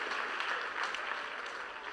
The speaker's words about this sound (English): Give everybody a hand clap. You guys are all special today.